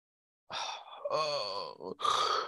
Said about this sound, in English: Excuse me for yawning. Didn't sleep very well.